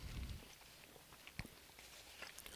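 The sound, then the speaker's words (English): Quiet munching on a sandwich, with soft irregular crunches and smacks as someone chews, and one slightly sharper bite partway through. No one speaks. “I'm still munching over here.”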